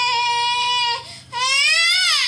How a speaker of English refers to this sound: So angry that she couldn't move forward. She's trying to get my phone. So she was pulling herself along, but her legs weren't really working, were they? Yeah. Oh, her crying.